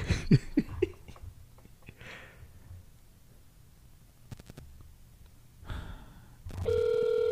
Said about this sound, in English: Okay, what is the most called phone number? Here it is, ready? No. Let's call it.